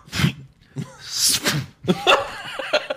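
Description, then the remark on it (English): A voice imitates throat clearing: a run of harsh, raspy, breathy bursts, then a rougher voiced rumble trailing off. The sounds are moderately loud with no clear speech around them. “Like the bullet's on its way just because he starts clearing his throat.”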